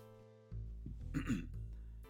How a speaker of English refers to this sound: Let me clear my throat a bit, get some water.